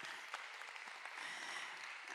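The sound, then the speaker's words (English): Steady audience applause from a church audience, a dense wash of many hands clapping at an even, sustained level with no voices standing out. “So please, can we give a warm round of applause”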